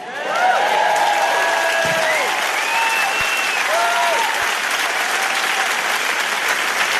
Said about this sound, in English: Thank you. Thanks for clapping. I really appreciate you coming to see me.